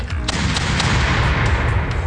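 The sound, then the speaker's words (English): A small cannon fires amid a steady, loud rumble, with several sharp blasts cracking through low, booming noise over about two seconds, like a burst of artillery. “Actually, it should be just a little cannon.”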